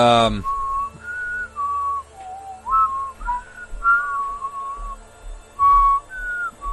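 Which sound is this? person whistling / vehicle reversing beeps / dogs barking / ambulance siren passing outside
person whistling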